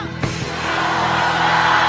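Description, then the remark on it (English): A large crowd erupts in loud, sustained shouting in response to a call to shout that it's not over, a dense roar of many voices that swells and holds steady for a couple of seconds. “And as you're shouting, I want you to see a particular area of your life where you're like, surely.”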